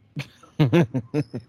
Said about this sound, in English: It's funny, I just got over COVID a week ago, man. I still got a wicked cough from it. I have to mute my mic every now and then. It sounds like it's like I've been smoking cigarettes for 10 years straight, like 10 packs a day kind of shit.